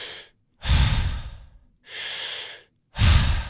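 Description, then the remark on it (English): Deep, airy diaphragmatic breaths drawn through the mouth in a steady, connected cycle, a strong whooshing inhale followed by a light exhale, repeated with only short gaps and no talking. “Inhale strong, exhale light through your mouth. No pauses. It's all connected.”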